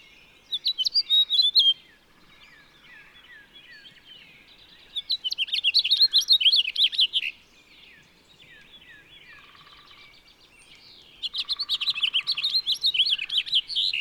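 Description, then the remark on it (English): A house finch sings three lively, warbling bursts of rapid, rising and falling notes, each lasting about two seconds with short pauses between, clear over quiet background. “As if right on cue, I home in on another finch, a house finch.”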